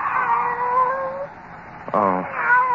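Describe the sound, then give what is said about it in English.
A pet cat called Kitty meows in long, drawn-out, wavering cries, then lets out a sharper, louder meow near the end before starting another plaintive call. “Oh. It's you, Kitty. Barbara's pet.”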